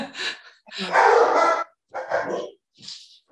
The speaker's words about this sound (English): will edit all the dog barking out, I'm sure.